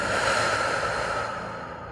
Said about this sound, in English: Close your eyes. Take a deep breath. Breathing in through our nose and out through our mouth.